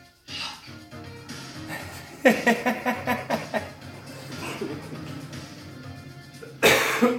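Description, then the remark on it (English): A person coughs repeatedly in a quick, rough series of bursts, fairly loud, followed by quieter hacking and one last strong cough near the end. “I'm coughing! I can't stop coughing!”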